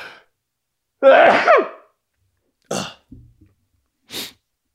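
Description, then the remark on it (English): A loud sneeze with a drawn-in voiced lead-up, followed after pauses by a few short, sharp breathy bursts like sniffs or smaller sneezes. No one speaks. “I had to sneeze.”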